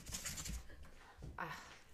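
Paper rustles loudly right up against the microphone, a couple of crinkly bursts over about two seconds, with no one speaking.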